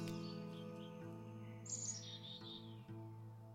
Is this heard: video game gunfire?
no